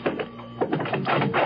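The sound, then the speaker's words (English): A door being opened, with a run of mechanical rattles and clunks coming in several uneven bursts over about a second and a half, fairly loud, with no voices. “Excuse me, Chick, while I get the door...”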